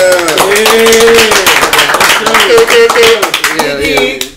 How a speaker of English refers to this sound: You know, special 10th episode. I'm gonna clap it up for that.